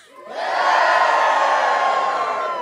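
An audience taking part in a told story bursts into loud, sustained cheering as the heroes: the cheer swells within half a second and holds steady, a dense wash of many voices shouting and whooping together with no pauses.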